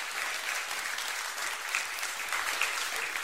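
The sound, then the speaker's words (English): A crowd applauds steadily, a dense wash of many hands clapping at an even, moderate loudness with a few sharper claps standing out, with no voices. “Give me at least a faith applause, all right?”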